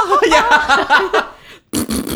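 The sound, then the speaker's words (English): Someone blows a loud, wobbling buzzy fart noise with their mouth, pauses briefly, then adds a few short, rasping sputters. “They come into your house and put on your clothes for you and just make fart noises.”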